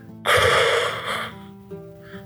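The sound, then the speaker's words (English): A voice imitates a big man's heavy, hissing breathing inside a helmet: one loud, drawn-out breath lasting about a second, then a fainter follow-up, over a low steady hum. “So you just hear him breathing in that helmet. It's like...”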